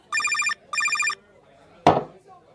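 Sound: telephone ringing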